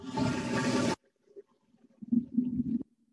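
A toilet flushes with a loud rushing surge that stops abruptly after about a second, followed by soft gurgles and a low, bubbling drain rumble near the end.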